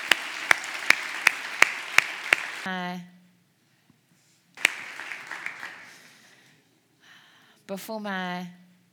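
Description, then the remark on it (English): A church audience claps in thanks to the Lord in a steady, even beat, about seven sharp claps in under three seconds, then the clapping stops and a voice rings out in bursts. “Why don't you give the Lord just a thanks and a clap right there?”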